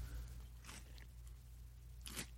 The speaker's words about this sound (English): I can hardly chew my snap peas right now.